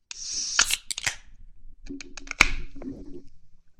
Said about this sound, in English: Oh, that was nice. I just, like, spewed all over myself. It's been a while since we opened cans.